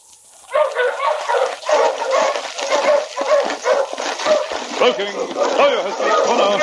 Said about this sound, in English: Already, Luke could hear the approaching dog team of his pursuer.